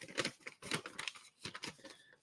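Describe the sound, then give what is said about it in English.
Crisp rustling and crinkling of a small piece of paper being handled and folded over, coming in several short bursts with brief pauses between them, with no talking. “If you take a piece of paper and fold it over, because you're trying to get from point A to point B, right?”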